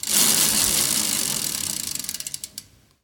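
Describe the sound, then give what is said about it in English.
A selection wheel of dish choices spins with a rapid, dense clatter of ticks that gradually slows into distinct, spaced clicks before stopping on curry after about three seconds. No voices accompany it. “Okay, all right, well, we'll give it a spin, see what we get.”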